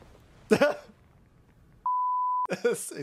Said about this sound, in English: Oh, hold on. There's a beep, too.